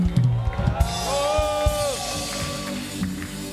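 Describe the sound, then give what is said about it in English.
A crowd claps and shouts praise to the Lord together, with a few rising whoops and sustained cries riding over a dense wash of applause that holds steady for several seconds. “Give the Lord a mighty clap of it and add a shout of praise.”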